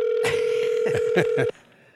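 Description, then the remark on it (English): A steady telephone tone hums for over a second while several keypad presses click through it in an uneven rhythm, then the line cuts off abruptly, leaving faint background noise. “Maybe you should call a cell phone.”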